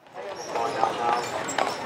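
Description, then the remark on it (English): Horse-drawn carriage hooves clip-clop in a few sharp, uneven knocks on pavement on Mackinac Island in Lake Huron, Michigan, on the 4th of July, set against a busy outdoor background of murmuring voices. “This island in Lake Huron is famous for its fudge and horse-drawn carriages.”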